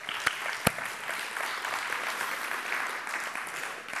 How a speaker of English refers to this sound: You glad you came today? Give God a praise clap.